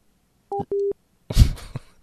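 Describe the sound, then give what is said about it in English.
Two short electronic keypad tones beep in quick succession as buttons are pressed on a phone to make a call, followed by a brief clattering, rustling thump. No one speaks. “Somehow, she was making a phone call to...”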